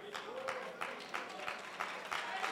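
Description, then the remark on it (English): An audience claps together in a steady, even beat, the rhythmic claps blending into a soft wash of crowd noise. “Hold on, hold your claps.”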